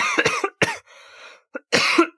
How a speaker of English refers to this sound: Also, as a fun side note to all of this coughing, my dad's texting me and I'm telling him what's happening.